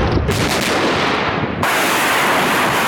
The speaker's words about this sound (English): With Putin's forces firing missiles and artillery to hammer towns and cities, often indiscriminately.